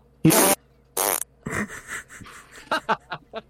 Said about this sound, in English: Why is he just farting?